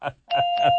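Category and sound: signal or alarm, bell ringing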